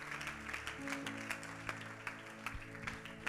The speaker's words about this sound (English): Oh, give it up for Jesus. Clap your hands.